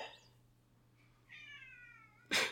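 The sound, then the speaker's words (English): A male cat lets out a long, drawn-out meow, preceded by a brief faint chirp, then a sudden loud rustling burst cuts in at the end over a low steady hum. “Our cat never pays attention to us, and I know. Now he's over here bugging us.”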